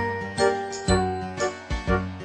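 A bright jingling bell, Noddy's bell from the Noddy theme, shakes in several quick bursts at an uneven rhythm, ringing out clear over sustained musical tones, with no voices.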